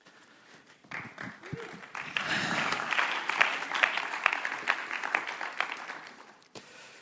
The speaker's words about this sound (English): That's obviously QTC students clapping, and they're only clapping because we let them come here instead of going to lectures.